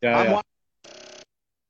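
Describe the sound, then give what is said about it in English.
A phone rings in two short tonal bursts separated by a brief pause, the first loud, the second noticeably quieter and thinner. “Oh, yeah, no, I got a phone call.”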